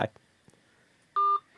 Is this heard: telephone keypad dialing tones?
yes